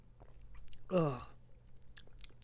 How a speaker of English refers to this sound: Yes, it's water I'm drinking. I'm always drinking water.